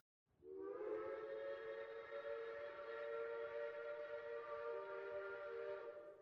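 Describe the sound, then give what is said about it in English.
A train whistle sounds one long, steady blast lasting several seconds, a rich multi-toned chord that holds firm and loud before easing off at the end, with no voices present. “The train whistles again.”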